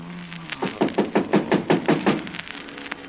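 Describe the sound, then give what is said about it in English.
A neighbor from next door raps on a door in a quick, steady series of about ten solid knocks that stop abruptly, leaving quiet behind them. No one speaks. “Somebody at the door.”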